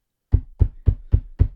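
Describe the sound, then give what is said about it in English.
Five firm, evenly spaced knocks on a door, each a dull, heavy thud. They come in a steady quick rhythm after a brief pause, fairly loud, with no voices. “Oh, is that the door?”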